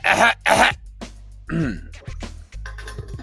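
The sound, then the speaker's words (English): A man clears his throat with two loud, rough bursts, followed by a short hum and a few scattered grunts and breaths, with a low background rumble throughout. “Let the man clear his throat.”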